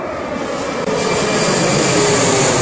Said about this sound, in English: Like, that is a legit plane going right over his head about to land.